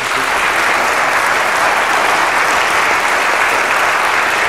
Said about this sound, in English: I'm going to let you applaud wildly in a moment.